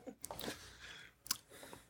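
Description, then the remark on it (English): Someone slurps a Red Bull energy drink: a few short, wet mouth bursts with brief pauses between them and one sharper slurp near the end. Nobody speaks. “Drink your Red Bull.”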